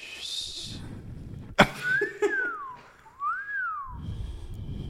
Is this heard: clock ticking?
no